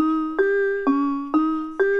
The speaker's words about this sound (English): Yeah, and here's an example of a piano sound without reverb.